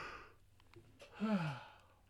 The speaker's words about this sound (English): big yawn number two